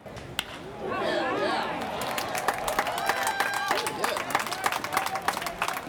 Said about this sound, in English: As you heard in that little clip, the crowd became energized when the Indians started to stage their comeback.